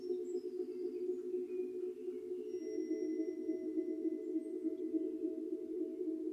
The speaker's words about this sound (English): Strike the tuning fork. Follow the slow fade of the attack.